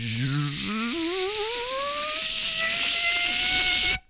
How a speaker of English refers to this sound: That was a long zipper. Did you hear that? Oh, I heard it.